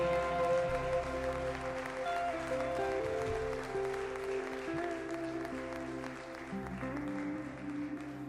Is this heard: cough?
no